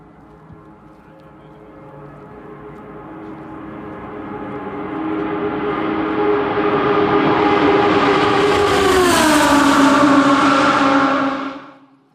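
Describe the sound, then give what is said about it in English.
A two-seat race car, with a passenger in the back seat, roars and builds steadily in loudness during a ride at up to 180 miles an hour, its harmonic whine climbing and then shifting pitch near the end before cutting off abruptly. No voices are heard. “Here's just about 13 seconds of the ride. That's me in the car, by the way.”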